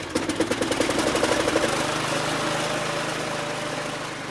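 A lawnmower engine chugs with a rapid, pulsing rhythm for a moment, then settles into a steady, droning hum, fairly loud and close, with no one talking.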